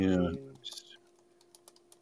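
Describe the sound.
A quick run of light clicks on a computer keyboard as a search is typed in, a handful of sharp taps at an uneven pace, following a brief loud voice at the start with a steady low hum beneath.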